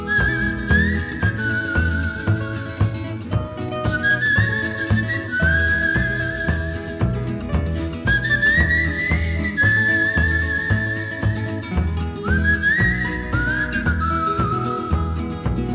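A clear, high whistled melody with short sliding phrases rides over a full country band: steady strummed guitars, bass and drums keeping an even, loping beat. No one sings.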